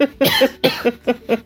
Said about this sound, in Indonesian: Duh, gue batuk mulu ya kalau ngobrol sama lu ya.